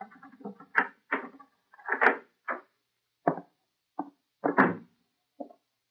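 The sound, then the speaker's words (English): A key jiggles and clicks in a lock, followed by a series of wooden clunks and thumps as the door of a darkened house overhanging the sea on Long Island is unlatched and pushed open, with no talking. “She gave me a key and made me unlock the door.”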